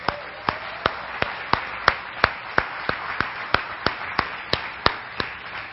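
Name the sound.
audience applause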